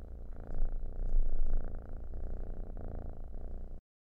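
A cat purrs steadily for about four seconds, a low rumbling drone with a gentle rhythmic pulse, swelling slightly in the middle before cutting off abruptly.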